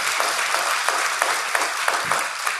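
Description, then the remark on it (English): Steady applause from a crowd giving God a hand clap of praise for the new year, a dense wash of many hands clapping with a few sharper claps rising above it at a loose, irregular rhythm. Moderately loud, with no voices. “Why don't you give God a hand clap of praise for this year?”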